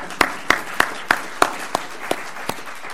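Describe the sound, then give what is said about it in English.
Applause for a pianist's music and readings, made of about nine sharp, evenly spaced claps that gradually slow and grow fainter toward the end, with no talking over them. “So let me give claps to that.”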